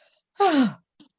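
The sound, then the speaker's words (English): A single loud, sharp gasp for breath from a man's mouth as his chest is pushed down, voiced and falling in pitch, lasting under half a second, followed by a brief faint breath sound in otherwise quiet surroundings. “A big gasp emits from his mouth.”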